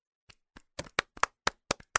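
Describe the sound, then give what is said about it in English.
A brief round of applause for healthcare professionals: about nine sharp hand claps in a quick, steady rhythm, crisp and moderately loud, with no voices. “No, I just want everybody to appreciate our healthcare professionals and give them a round of applause because they are heroes.”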